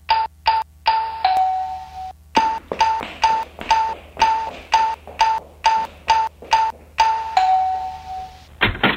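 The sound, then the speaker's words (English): A doorbell rings over and over in quick, insistent bursts, each a bright electronic tone with a couple of longer held chimes mixed in, loud and without any talking. “Yeah, let me get the door.”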